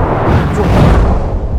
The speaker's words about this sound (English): I threw the glass right at his feet. The glass burst and the flame immediately grabbed at him, setting him aflame.